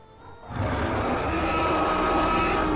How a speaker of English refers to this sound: The familiar sound that you've heard before, the roar of a T-Rex.